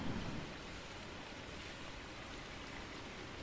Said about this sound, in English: The dreadful wind and rain.